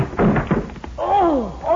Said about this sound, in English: I'm going to try to knock that door open.